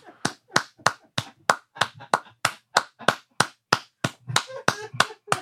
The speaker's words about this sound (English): Hey, man, y'all give us a round of applause.